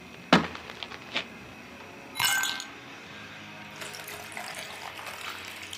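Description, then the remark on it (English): A couple of sharp glassy clinks, a brief rattle, then a steady trickling pour of liquid into a glass running for a couple of seconds, fairly quiet, with no talking, as a man pours himself a drink. “Listen, when he pours himself a drink, listen.”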